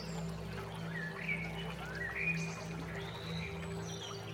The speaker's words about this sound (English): And as the birds sing and the sun shines, you walk towards a shimmering, babbling brook, fresh with crystal water, cold, crisp, healing.